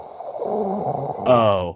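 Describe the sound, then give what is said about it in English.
A person imitates heavy, raspy breathing, a rough drawn-out rasp that swells into a louder, more voiced growl near the end before stopping abruptly. Fairly loud. “It sounded like someone breathing, like someone going.”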